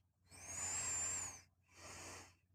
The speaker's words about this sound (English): nasal breathing sounds.